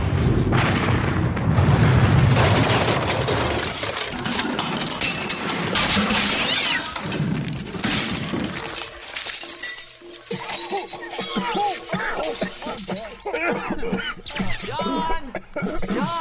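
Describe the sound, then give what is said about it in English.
A dynamite explosion: a loud, deep booming blast, then a long stretch of crashing, shattering glass and tumbling debris that gradually thins out. “I have something better than a fistful of dollars to get us out of here. What's that? A fistful of dynamite.”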